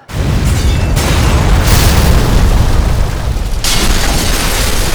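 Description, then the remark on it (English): A house explodes after a fire started near its kitchen: a huge explosion booms and rolls into a loud, sustained roar, deep rumbling filling the whole stretch with rushing, crackling surges on top as the house burns; no one speaks. “But because it was started so near the kitchen, it rapidly expands and then there's this huge explosion.”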